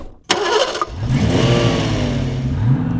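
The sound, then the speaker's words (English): A car engine cranks with a sharp burst, catches, then revs up and settles into a steady, rising drone as the car pulls away toward a scanning shop, fairly loud with no talking. “Well, we're on the move now, and the scanning shop where they will digitise the scrapbook is only 2 minutes away.”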